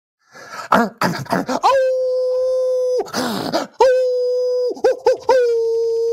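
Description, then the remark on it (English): A man imitates a red wolf howl as a sound effect for the Arkansas State Red Wolves, letting out long, steady, wavering howls broken by raspy, breathy bursts. The voice is loud, with no other talking. “What's your Red Wolf sound effect?”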